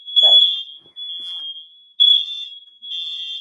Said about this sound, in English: My mom was cooking something, and our fire alarms started to go off. Twice.